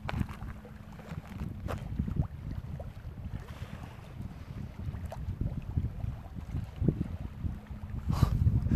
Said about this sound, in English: I see the ocean and the waves, and I hear the voice of the smashing waves on the stone of the beach. Can you hear it?